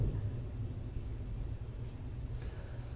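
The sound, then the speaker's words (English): A deep, low rumble of thunder outside after a lightning strike rolls on steadily for a few seconds, heavy in the bass and fairly even in loudness, with no voices over it. “Lightning strikes outside.”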